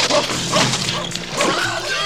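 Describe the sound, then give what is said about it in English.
A dog barks a few times in quick bursts, set against a dense, noisy backdrop of other sound that partly crowds the barks. “Or will this dog”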